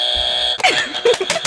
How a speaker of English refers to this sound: I thought my buzzer was broken. I was like, wow, it's still going. He beat me by a millisecond.